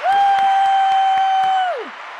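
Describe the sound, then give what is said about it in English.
Rhythmic clapping, about seven steady claps, welcoming a guest at the start of a show, under a loud sustained high whooping cheer that holds one pitch and then slides downward at the end. “And I love the clapping coming in.”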